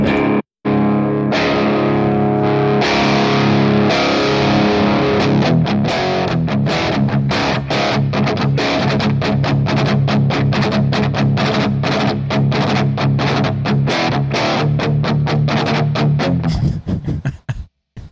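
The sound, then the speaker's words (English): A heavily distorted electric guitar in drop D plays a chuggy metal tone: sustained chords, then rapid, tightly muted chugging riffs, loud, with a brief pause near the start and an abrupt stop at the end. “And create like a chuggy metal tone.”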